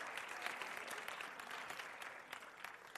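Steady applause from an audience, a dense wash of many hands clapping at once, sustained at an even level for the full few seconds with no voices standing out.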